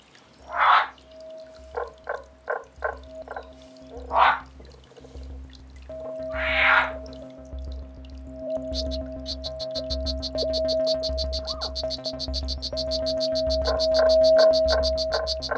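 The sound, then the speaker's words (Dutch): Green frogs croak in a lively chorus, with bursts of rapid, rhythmic calls over a steady pulsing low drone, layered with a soft watery trickle throughout. “Het zijn hele mooie diertjes, die groene kikkers.”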